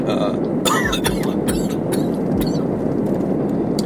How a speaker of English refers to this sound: Oh, random cough. Sorry. Don't worry about that.